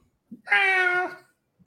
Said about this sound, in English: Does anyone else keep hearing Joe's cat go meow occasionally?